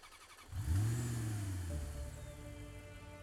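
A car engine is started with keys left in the ignition, cranking and catching after a brief quiet moment, revving up loudly before settling into a steady idle hum.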